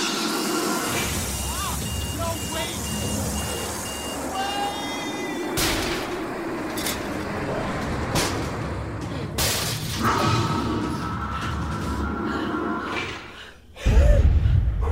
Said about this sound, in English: Bomb has detonated. The hull is holding.